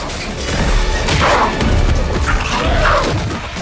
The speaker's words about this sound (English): Dracula changes into the winged demon. The wolfman leaps at him, but Dracula punches him. The vampire flies off with a wolf and slams him into a wall before punching and kicking him.